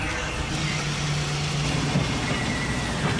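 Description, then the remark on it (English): On the fishing boat Dolores Louise, a winch drones steadily as Joe Scola hauls up an experimental net of green mesh, a constant motor rumble with a low humming tone and no voices. “Back on the Dolores Louise, Joe Scola is hauling up his experimental net. Yard after yard of green mesh winds back onto the winch.”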